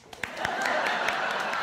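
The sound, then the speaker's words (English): An audience breaks into applause for a question: a few scattered claps first, then swelling quickly into a steady, dense wash of clapping that holds at a moderate level. “This is an odd thing to do, to applaud a question, isn't it, when you think about it, really?”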